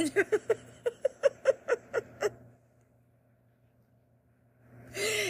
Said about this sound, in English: Okay, I feel the need to interject and let you know that, you know, I do try and edit this shit, but I'm leaving my dog snoring in the background of that last segment because it's too fucking good.